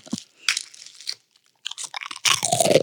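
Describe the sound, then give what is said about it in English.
Loud crunching of a fortune cookie being bitten and chewed right into a microphone, in several brittle bursts separated by short pauses, with no talking. “I feel like you got to stop chewing in the mic”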